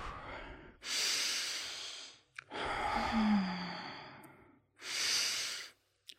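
Slow, deep breaths taken with a hand on the belly, filling the belly first and then the chest, each long airy inhale and exhale rising and fading in a steady rhythm, with no talking; part of a series of 30 breaths.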